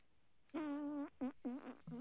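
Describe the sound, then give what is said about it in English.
A loud, buzzy fart sound: one long drawn-out blast followed by three shorter squeaky bursts in quick succession, with no talking. “farting again.”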